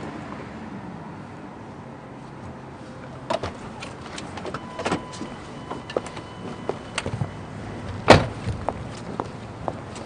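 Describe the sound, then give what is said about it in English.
A truck's power window hums and whirs upward inside the cab, with scattered mechanical clicks and creaks, then a sharp thunk as it closes. No one speaks. “I gotta raise this window.”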